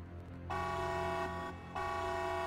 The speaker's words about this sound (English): Gathering her bag, she heads for the emergency exit at the back of the room, pushes the bar, setting off a piercing alarm.